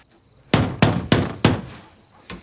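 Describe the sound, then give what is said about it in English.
Four firm knocks on a door in quick, slightly uneven succession, each with a short boomy decay, then a pause and one fainter rap. No voices are heard. “Quit your goddamn knocking, I'm coming.”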